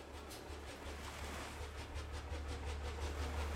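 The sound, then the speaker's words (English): A steady, low engine throb rumbles underneath a continuous swishing, rippling rush of churning water from the propeller wash of a yacht moving swiftly at night, with no voices present. “There was no sound that night, save for the muffled throb of the engine that drove the ship swiftly through the darkness, and the swish and ripple of the wash of the propeller.”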